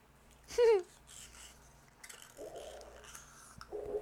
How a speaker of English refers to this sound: Okay, did you guys catch that? Like, there's a loud kind of breathing noise, which I thought might have been me breathing into the shot cup.